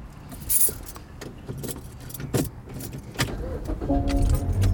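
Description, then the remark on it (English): Keys jingle in a few short bursts, then near the end a car engine turns over and settles into a steady hum with a faint motorized whine of a window rolling down. “Can you start the fucking car and roll the window down so I can get some air?”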